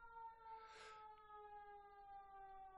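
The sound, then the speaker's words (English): Emergency sirens wail steadily in the background with stable tones, with a brief noisy burst near the start and no talking. “Also, hear the sirens in the background. Quiet, listen.”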